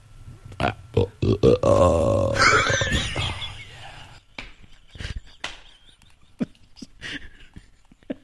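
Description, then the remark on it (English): A long, loud, guttural belch rumbles for a couple of seconds, rough-edged, framed by a few short clicks and soft breathy noises before and after. “That was a Golden Corral burp.”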